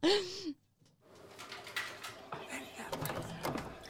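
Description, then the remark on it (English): An office water cooler dispensing water: a brief hollow gurgle, a short pause, then a steady, moderately loud rush of flowing water with bubbling, uneven texture lasting a few seconds. “So, the water cooler.”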